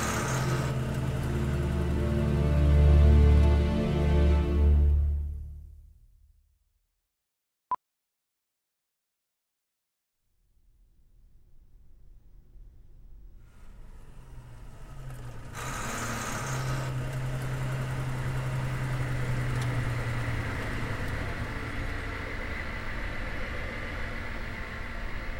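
A Hummer's heavy engine rumbles loudly as it drives down a ramp into a parking garage, then drops away into near silence broken by one sharp click, before the engine noise builds back up and holds at a steady drone.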